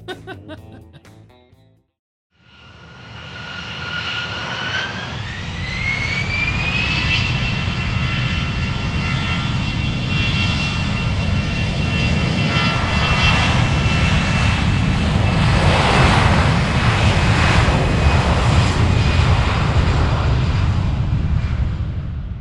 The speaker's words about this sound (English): That's the Rolls Royce RB211.